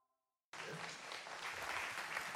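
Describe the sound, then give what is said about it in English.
After a brief silence, an audience's applause starts abruptly and holds at a flat, even level, a dense wash of clapping with no cheers or voices. It sounds subdued and unenthusiastic. “I appreciate that lackluster applause.”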